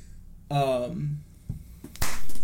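A short hummed vocal sound, then a couple of sharp, crisp hand claps, followed by a brief burst of noisy rustling.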